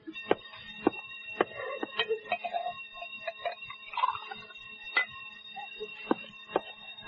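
A steady, ringing alarm tone sounds continuously at a moderate level, with scattered sharp clicks and clatter breaking in irregularly over it.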